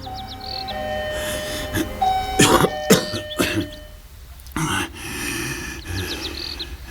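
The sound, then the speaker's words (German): A doorbell at a villa rings with steady, sustained electronic tones, amid outdoor ambience with faint bird chirps and a few short rustling or throat-clearing noises. “Wo ist denn hier die Klingel?”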